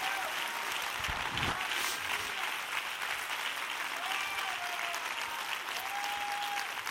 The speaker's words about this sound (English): If you believe that, give the Lord a hand clap of praise right now.